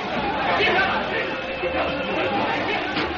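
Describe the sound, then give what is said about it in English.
Dense, steady crowd chatter fills a bar packed wall to wall and thick with smoke, many overlapping voices blending into a continuous murmur with no single speaker standing out, holding an even loudness throughout. “Inside, the place is packed, wall to wall.”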